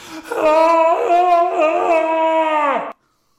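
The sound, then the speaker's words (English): A loud Tarzan jungle hero yell from the arcade game Jungle King or Jungle Hunt, one sustained warbling cry of about three seconds with a wavering, yodel-like pitch, heard alone and cutting off abruptly. “Tarzan, do the damn yell.”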